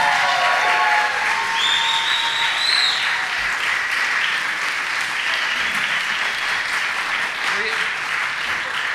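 An audience at a Story Slam event claps steadily and loudly for about nine seconds as a storyteller is introduced, a dense unbroken roar of hands with scattered cheers and a few high whistles rising above it.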